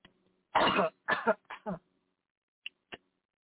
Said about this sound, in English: Hold on, I need to cough.